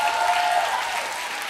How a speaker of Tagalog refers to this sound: Ay, naka! Ay, naka! Wala, mahina yung palakpak!